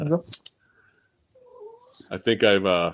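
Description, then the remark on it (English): A cat meows insistently, a drawn-out, wavering cry followed by a louder, harmonic-rich yowl at the end, with a brief human voice at the start and clear pickup. “I think my cat needs to use a bathroom.”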